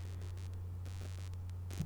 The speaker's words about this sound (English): And you hear that static, some bullshit.